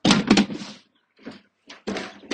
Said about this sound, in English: Sorry, this, I'm just tidying up some bins.